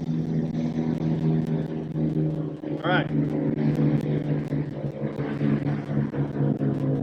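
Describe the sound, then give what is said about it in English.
A steady, droning buzz of small engines hums continuously in the background, fairly loud and unbroken, while a person speaks briefly over it. “It's not like motorcycles. It's not like a moped gang. Anyway, all right. Or very low crop dusters. I couldn't tell.”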